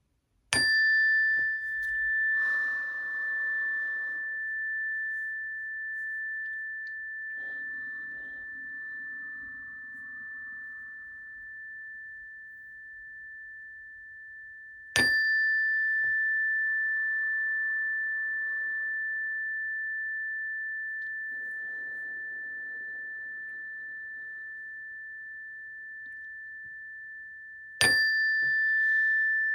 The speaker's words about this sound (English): So I'll hit the chime and just take a nice big inhale and exhale, and we'll work through it.